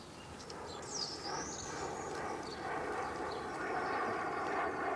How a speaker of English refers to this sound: Okay. Stand by to go again as soon as he's gone. Boeing 707. Pan Am or Aer Lingus? Lufthansa.